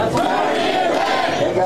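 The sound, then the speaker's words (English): A rowdy but nonviolent crowd of dozens of people shouts and yells together outside the Maricopa County Election Center in downtown Phoenix, a dense, continuous wall of overlapping voices at steady loudness with no pauses. “It is dozens of people that have gathered, or regathered, I should say, here outside the Election Center. It's been rowdy, nothing violent”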